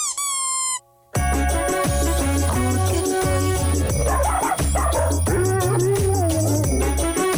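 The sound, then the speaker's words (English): A bouncy, reggae-like Christmas song made for dogs, with a steady thumping bassline, opening with a run of high squeaky chirps, then barks popping through the loud music here and there. “There's some squeaky noises and dogs barking.”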